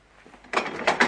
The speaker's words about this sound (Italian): Ecco qua, tavolo ribaltabile, tac.